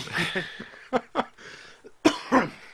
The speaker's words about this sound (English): Cough. Bless you. Cough.